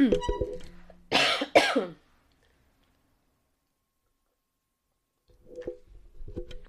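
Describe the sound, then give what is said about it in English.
A quick sip of water with a short slurp and a throat-clearing burst, followed by a pause of near silence before a voice resumes talking. Speech is also heard just before the sip. “I got to take a drink of water here just for a second.”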